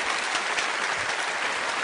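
A studio audience of a morning show claps steadily for a guest, a dense, continuous patter of many hands at an even loudness with no voices over it.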